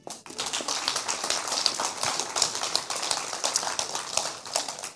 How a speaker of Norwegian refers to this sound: Takk for det. Gi en applaus.